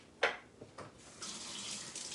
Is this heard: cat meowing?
no